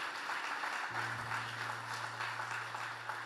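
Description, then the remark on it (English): A church audience claps hands during a morning sermon in a dense, steady wash of applause, with a low sustained hum entering partway through underneath the clapping. “Come on, can we clap our hands this morning?”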